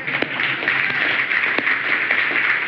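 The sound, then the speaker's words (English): A crowd bursts into steady applause at news that Grace Community Church in LA won its legal battle with the state of California and Los Angeles County, a dense wash of many hands clapping with a few sharper individual claps standing out, sustained at an even, fairly loud level. “you can applaud.”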